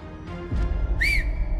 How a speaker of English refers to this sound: At the sound of someone whistling, Urbano looked back